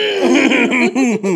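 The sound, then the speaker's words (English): A voice imitates a suppressed cough: a loud, strained, voiced sputter held in the throat for over a second, breaking into a few short pulses near the end, with no words. “So, I had, you know how you try to suppress, try to suppress the cough.”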